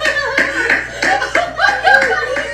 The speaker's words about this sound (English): That's me clapping.